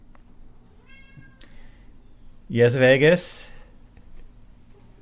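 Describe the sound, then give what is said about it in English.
A cat lets out one loud, drawn-out meow, with a person's brief spoken question beforehand and quiet background noise around it. “Kitty, you got your treats and your second treats this morning and everything, so you're good.”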